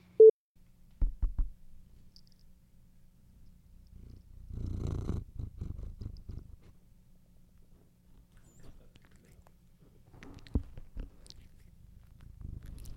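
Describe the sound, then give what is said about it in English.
A cat purrs, a low continuous rumbling that swells and fades over several seconds, with a few soft mouth clicks and thumps mixed in. “Probably the purr it did. Kitty mouth noises.”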